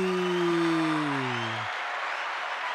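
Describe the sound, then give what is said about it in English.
Steady, dense studio audience applause fills the whole clip, with a low electronic synth tone gliding downward underneath for the first second and a half before the clapping continues alone. “Are you doing the applause? No, that's just our studio audience.”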